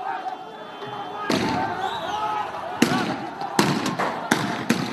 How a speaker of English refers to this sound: The unnerving silence is shattered by sporadic gunfire in the distance, believed to be between security forces and armed groups from either side.